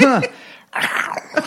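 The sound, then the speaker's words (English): A man lets out a short, playful growl with a rising-then-falling tone, followed after a brief pause by a rougher, raspy rumble, fairly loud. “And he does so with a growl while he says he's on the prowl.”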